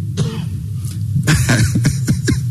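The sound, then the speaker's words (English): A person coughs several times in quick, rough bursts, fairly loud, with a throaty clearing quality between the harsher hacks. “You know, when these times come, you find you're coughing more than you don't know whether it's your mind or whatever.”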